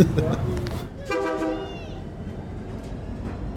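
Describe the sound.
A train rumbles past on the tracks beside Jessica's taco truck in downtown Modesto, in the San Joaquin Valley, and its horn sounds one steady, harmonic blast of about a second. Faint voices are heard briefly at the start over the rolling low noise.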